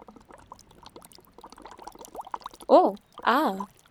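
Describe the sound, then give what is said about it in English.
Soft, steady rain patters as a scatter of light drips, then two louder voiced, warbling sounds rise briefly over it near the end. “Rain seems nice to nap under.”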